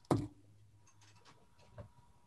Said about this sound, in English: Shaking the dice. Round. Okay, that's a 10.